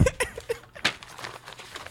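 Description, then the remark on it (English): Paper crinkles and rustles as a letter is handed over, in a string of short, irregular crackling bursts, fairly quiet, with a faint breathy vocal sound near the start. “Oh, I can do the paper noises for you.”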